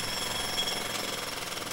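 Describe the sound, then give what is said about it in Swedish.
A continuous harsh, buzzing power drill grinds steadily into a wall, with a slightly muffled quality, no one talking. Russian workmen are drilling into the wall. “nu hör jag att det är ryska hantverkare som borrar i Emils vägg”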